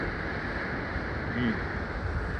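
Rough, aggressive ocean surf churns in a steady roar of rushing water, with a gusty windy rumble mixed in and no break in the noise.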